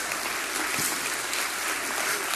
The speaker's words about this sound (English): How many of you have had God give you some money? Let me see your hand. Come on. Let's give God a hand clap of praise if God gave you some money.